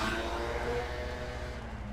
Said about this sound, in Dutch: Veel scootertjes, hè? Scootertjes zijn leuk.